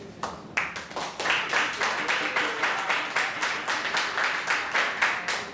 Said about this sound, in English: Let's a round of applause. Let's keep it going for a second.